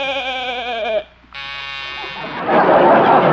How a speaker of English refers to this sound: Man, the Goshen, what was that? That's a new door buzzer, Doc.